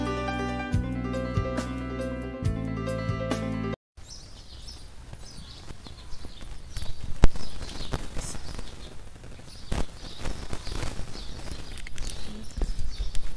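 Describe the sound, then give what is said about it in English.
A short musical intro cuts off, then horse hooves clip-clop irregularly on the ground outdoors at a horse farm, with faint birdsong and open-air ambience around them. “At the horse farm.”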